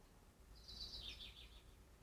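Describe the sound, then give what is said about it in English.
A faint bird twitters in a brief warbling burst lasting about a second, over a soft, steady low background hum with no one speaking. “Don't, you know, don't go away with the birds chirping in the background.”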